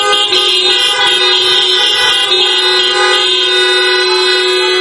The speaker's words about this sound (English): If you know that you've been translated, and you really know that you've been translated, come on and honk your horn.